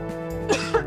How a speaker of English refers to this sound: That's a great way to come back in the open. Just me choking. Everyone hears a cough and instinctually like covers their mouth.